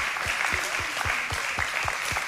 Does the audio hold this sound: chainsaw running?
no